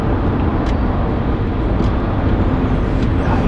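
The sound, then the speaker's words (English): A car drives at speed, weaving in and out of traffic on a busy highway, with a loud, steady rumble of road and engine noise filling the whole stretch and no voices. “Sorry, I had to do some weaving in and out of traffic there.”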